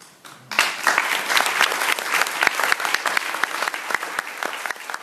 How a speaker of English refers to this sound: Stand up and clap.